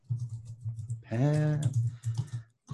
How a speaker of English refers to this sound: Typing it down. 1 second. Okay.